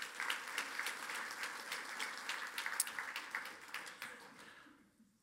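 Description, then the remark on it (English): A church audience claps together for a woman coming up to share a story, a steady, dense burst of applause holding fairly even for several seconds before thinning out and fading to quiet near the end. “Let's give her a round of applause for coming up.”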